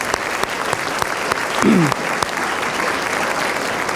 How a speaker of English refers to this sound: and let's just give them a round of applause, if you would.